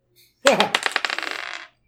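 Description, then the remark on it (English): A die clatters onto a hard tabletop during a tabletop role-playing game attack roll, then rattles in a quick run of sharp clicks that speed up and fade as it settles. Fairly loud, with no talking. “I know, I should use a different dice.”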